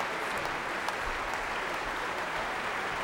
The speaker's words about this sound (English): He's on his way off the stage. Michael Tilson Thomas was applauding him as he was leaving, and Michael is making his way off the stage as well. But they will both be back.